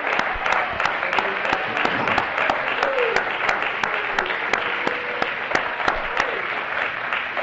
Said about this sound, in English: I feel victory. Let's clap our hands.